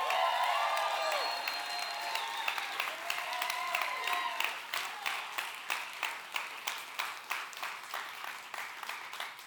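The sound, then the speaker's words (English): Loud audience applause mixed with cheering and high whoops, then the clapping settles into a steady, rhythmic unison beat that gradually thins out. “Well, thank you for your applause.”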